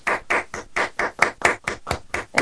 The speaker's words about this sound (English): There you go. Clapping doesn't work on Skype if you test it because it does all the cancellation. So the way it works is only the person who claps the loudest works.